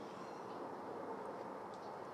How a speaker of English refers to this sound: You could hear the highway in the distance.